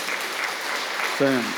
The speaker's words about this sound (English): Yeah, I mean, you don't have to feel shy to clap, okay? Just go ahead.